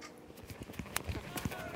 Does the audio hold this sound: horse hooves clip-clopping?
yes